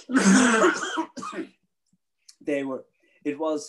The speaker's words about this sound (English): And I'm begging your pardon, I've got a cough, excuse me.